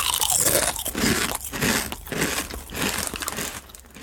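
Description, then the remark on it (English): Loud, crunchy chewing of something crisp, with repeated crackling bites and grinding in a steady rhythm for several seconds, no voices. “Moving on to your nibbles, what have you chosen to nibble on?”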